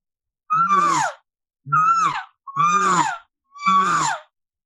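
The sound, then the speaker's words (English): Four imitated elk cow calls, made by lightly clearing the throat while blowing the cow call with the same air pressure, each a short, nasal mew that slides downward in pitch over a raspy, buzzing undertone, evenly spaced with brief pauses and no talking. “At the same time, I'm still using the same air pressure with that cow sound. And it makes it sound like it's a buzz with it.”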